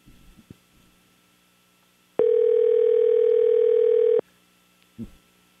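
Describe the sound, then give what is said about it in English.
A single loud, steady electronic ringing tone from an outgoing phone call to a cell phone lasts about two seconds, with faint thumps and quiet background noise before and after it. “So this is the cell phone. We will call the house phone after this.”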